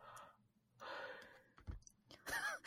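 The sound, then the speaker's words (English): A breathy yawn: a long airy inhale and exhale stretched over a couple of seconds, ending in a brief strained, squeaky vocal note. No speech. “The yawn doesn't really inspire much confidence, but okay.”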